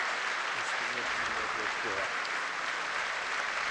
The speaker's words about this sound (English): Applause, unplanned.